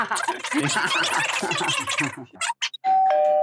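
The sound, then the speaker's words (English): After a stretch of people laughing and chattering at a Milo and Otis viewing party, a doorbell chimes a clear two-note ding-dong as someone arrives, a higher tone stepping down to a lower one that rings on steadily. “I think someone is arriving now.”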